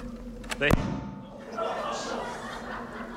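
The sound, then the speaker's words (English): A door swings open with a brief thud and a short, strained creak of its hinge, fairly loud, followed by low background murmuring. “The hinge of the door did creak.”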